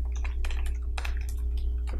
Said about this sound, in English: Don't type on the computer. Hey, and now he's checking all my questions and typing out.